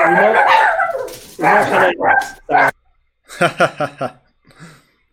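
A dog barks and yelps, first in a dense excited stretch, then a quick run of four sharp barks followed by a softer final yip.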